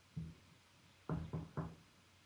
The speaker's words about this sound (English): Uh-oh. That sounded like trouble over there. That was knocking on wood.